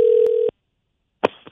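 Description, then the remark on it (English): A steady electronic ringing tone of an outgoing phone call sounds for about half a second, then cuts to silence before a sharp click and a brief rustle of line noise. “are we ringing? Yeah.”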